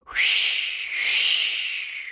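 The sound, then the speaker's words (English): A loud, steady rush of windy, hissing air sweeps in quickly and roars on for about two seconds with a faint whistling edge, swelling slightly midway before easing off a little: air blown out by Blake Wolf turning into a hurricane that uproots the trees of a magic forest. “The air blown by Blake Wolf turned into a terrible hurricane.”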